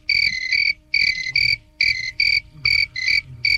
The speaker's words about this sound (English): That's a long cricket noise.